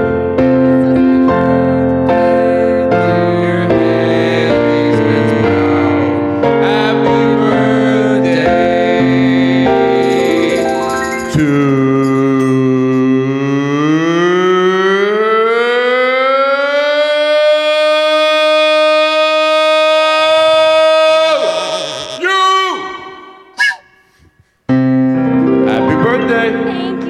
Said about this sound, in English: was busy making a duck call. Sorry.